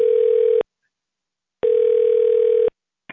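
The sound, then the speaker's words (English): A telephone ring tone heard over a phone line on a call to the Waterville Hampton Inn: steady, buzzy electronic tone bursts, each about a second long, separated by short silences, clear and fairly loud with no voices. “the phone just started ringing again.”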